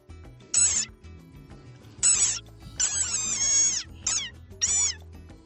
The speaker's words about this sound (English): The cry of the desert rain frog is the official war cry of the Varminions. Friends and minions of the Varmints podcast. So get out there and squeak like a ping pong ball-sized frog.